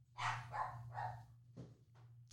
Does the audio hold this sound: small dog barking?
yes